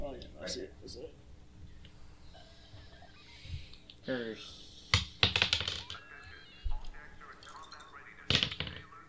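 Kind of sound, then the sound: household object, dice being rolled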